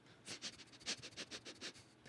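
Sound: sniffing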